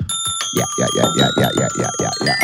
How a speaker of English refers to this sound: Ring the bell. Bing.